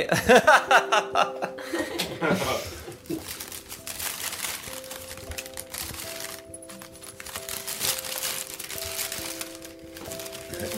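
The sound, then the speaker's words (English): Paper crackles and rustles in bursts as a wrapped gift, a glass-covered angel ornament, is opened, mixed with soft chuckles and a brief spoken word, while faint steady tones run underneath. “So you open it. Can you open it?”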